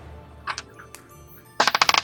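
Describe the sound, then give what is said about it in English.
A few sharp clicks of small hard objects tapping a surface, then a quick burst of rapid clattering as dice tumble across a table. No one speaks. “That was the wrong dice, but it's already been rolled.”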